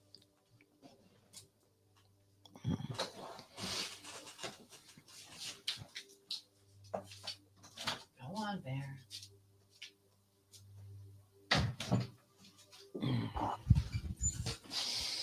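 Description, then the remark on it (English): A studio door is opened for a dog and later shut, with clunks, creaks and shuffling movement in between, over a steady low electrical hum and no speech. “I need to put a dog door in the door of the studio.”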